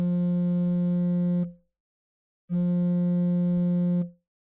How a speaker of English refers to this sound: right after that interaction, you feel your phone, your cell phone vibrating in your pocket.